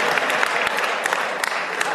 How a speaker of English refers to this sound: Now y'all rethinking that clap. Like, I was clapping until he said all that.